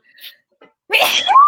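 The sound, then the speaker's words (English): A single sharp sneeze, set off by a lit candle, bursts out loud after a faint quiet intake of breath, ending with a brief rising vocal squeal. “This is probably because I have a candle lit here, and I rarely light candles because I'm not allergic. I just sneeze.”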